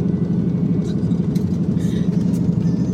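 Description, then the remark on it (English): A faulty car engine runs steadily with a deep, continuous rumble, and faint higher rattles and hisses come and go over the low drone. “gosh, this car is so ghetto.”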